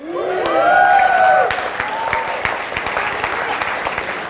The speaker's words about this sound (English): And I'm so glad you clapped about that because there's a lot of work to be done. And I'm glad you're excited.